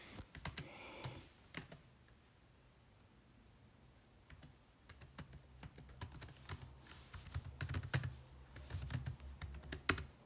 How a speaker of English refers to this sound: Can hear my typing right, that's really quite fast.